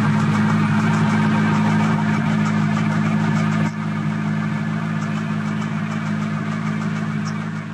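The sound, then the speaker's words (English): A Corvette Z06 sports car engine idles with a steady, low hum, while a faint ticking from the engine comes and goes irregularly on top of it, with no clear pattern. “And then this next one, this was from a video on Facebook, and that ticking sound's a little bit more intermittent. It doesn't seem like there's much of a pattern.”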